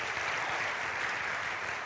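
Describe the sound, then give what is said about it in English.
A crowd claps steadily for a volunteer video team, a dense, sustained wash of many hands at an even, fairly loud level with no pauses, filling the whole stretch without any talking. “And so let's do one more round of applause for them, because they're amazing.”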